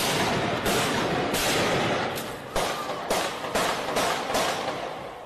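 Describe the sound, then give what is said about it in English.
Gunfire in Paris cracks out in a string of about eight sharp shots at uneven intervals, each cutting through a steady wash of loud background noise, with no voices heard. “Gunfire in Paris last month began 72 hours of bloody chaos.”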